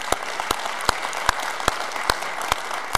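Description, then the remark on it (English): An audience claps in a steady, even rhythm, about eight sharp claps over three seconds, with a constant bed of scattered crowd noise behind the beat. “They're clapping for you to stay in your recliner.”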